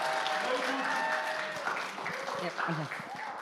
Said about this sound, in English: So I know she may be a bit nervous coming up to speak, so let's just give her a round of applause as she comes up and shares with us.